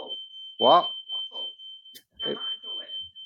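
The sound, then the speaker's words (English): A smoke alarm set off by cooking waffles shrills with a steady, piercing high tone that runs almost continuously, briefly cutting out midway, while people talk over it. “has just set the fire alarm off.”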